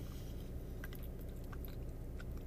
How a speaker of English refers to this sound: Because you really got to work to chew it. It's weird because it's strawberry cheesecake, but it's a cake.